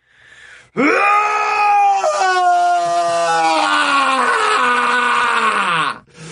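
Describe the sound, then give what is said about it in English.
A single long, loud scream, practiced as a therapeutic scream, held for about five seconds at a fairly steady pitch, raw and wailing, then cut off abruptly. No talking alongside it. “So this is you practicing a scream that would be some kind of therapy to make you feel good.”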